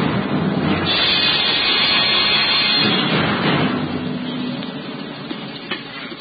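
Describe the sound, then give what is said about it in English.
A raging storm roars at night around the rugged battlements of the castle of Cedric in a dense, loud wash of wind and rumbling noise, surging and heaving for several seconds before easing slightly toward the end. No voices are heard. “Aye, the storm that raged that night around the rugged battlements of the castle of Cedric reflected well the tempestuous temper of the times.”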